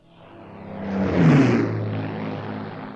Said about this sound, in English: a veteran Mosquito aircraft prepares for takeoff